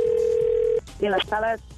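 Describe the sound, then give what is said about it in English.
A steady, single-pitched telephone ring tone hums for under a second as a call goes through, then cuts off and a voice briefly answers. “Today's phone tap.”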